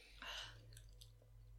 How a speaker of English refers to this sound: She takes a sip.